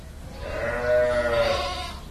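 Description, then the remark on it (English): Sheep bleat in a barn on a sheep farm that supplies milk for Roquefort cheese, as they get ready to be milked at 5 p.m., one long wavering cry standing out over a steady chorus of other animals and faint background noise, fairly loud throughout. “the sheep on the Seguin farm are getting ready to get milked”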